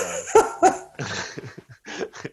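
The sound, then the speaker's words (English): A spaniel gives two sharp barks in quick succession, followed by a stretch of breathy, broken whimpering and snuffling that trails off in short uneven bursts. “tormenting innocent dogs.”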